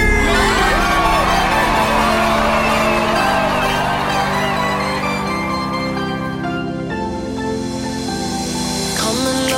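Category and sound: crowd, crowd screaming and cheering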